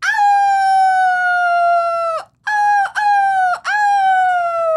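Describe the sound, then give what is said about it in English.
A person does a loud rooster-crow imitation: one long sustained call, then three more drawn-out cries separated by brief breaths, with no other talking. “I don't want to totally chicken out. Pull don't it off. Chicken.”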